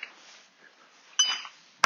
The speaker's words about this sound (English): But I think we all heard that. Solid bang right in the middle of the stone pole there.